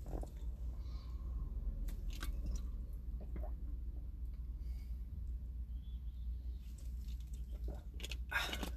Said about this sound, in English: Let me just drink a bit of water, please.